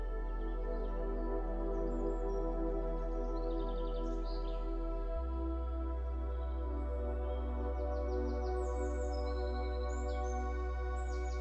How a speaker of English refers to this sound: birds are chirping. Listen to the sound of the birds. Try to identify birds by their sounds.